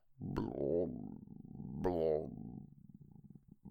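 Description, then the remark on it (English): A half-liquid, bubbling gurgle heard over a telephone line, with a voice-like quality, rising in two louder syllable-like surges over a steady low rumble, with no intelligible words. “As I listened, I thought I heard a sort of half-liquid bubbling noise.”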